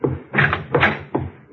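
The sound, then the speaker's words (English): Heavy knocking on a door, about five loud, resonant thuds falling in a slow, steady rhythm, with no voices. “I slammed it. The beating stopped.”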